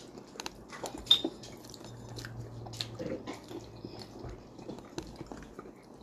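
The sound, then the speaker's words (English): Someone chewing crunchy food, with a steady run of irregular crisp crunches and bites at a low level. No one speaks. “What are you eating? Why is it crunchy?”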